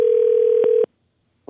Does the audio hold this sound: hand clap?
no